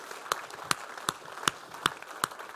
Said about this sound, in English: Come on. That was like, come on, let's give Him the best clap of praise right now. He is worthy. He is worthy.